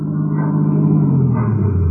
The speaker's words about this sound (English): I believe that's Mrs. Herger's car now, coming around the corner.